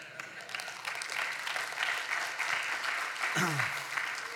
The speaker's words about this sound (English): That has to be the weakest clap I have ever heard in my life.